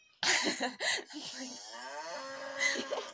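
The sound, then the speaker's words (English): A toy bear about 2 feet tall lets out one loud mooing sound, starting with a rough, breathy burst and stretching into a drawn-out, wavering tone for about three seconds, with no talking. “He says moo, by the way.”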